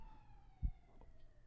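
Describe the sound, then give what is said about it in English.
Emergency vehicle sirens wail faintly outside, their steady tone slowly sliding lower as they pass, with a brief low thump partway through and no talking. “What's going on? There's sirens.”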